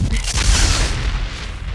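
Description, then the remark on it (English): A loud, sustained rumbling whoosh of a luxury space liner's engines as it pulls away from a spaceport and blasts into hyperwarp, deep and booming with a bright rushing hiss on top that swells early and holds steady. “And then, with a whoosh, it blasts into hyperwarp.”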